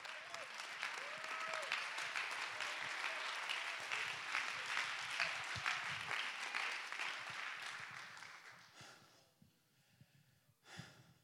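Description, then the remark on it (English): An audience claps their hands in praise of God in a dense, sustained burst of applause that stays loud for several seconds, then thins out and fades, with a few scattered claps trailing at the end. “Go ahead and clap your hands and give him praise.”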